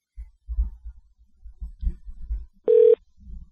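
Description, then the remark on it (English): A single short, steady telephone dial-tone beep sounds near the end, clear and fairly loud, after a stretch of low, muffled thumping and line rumble, as an outgoing call is about to be placed. No one speaks. “Dial tone. All right, phone a friend.”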